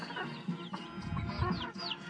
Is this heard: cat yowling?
no